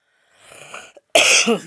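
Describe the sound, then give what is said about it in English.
A person draws a quick, breathy inhale, then lets out one sharp, loud cough, with a brief rasp trailing off. No talking. “And sometimes you'll hear me cough.”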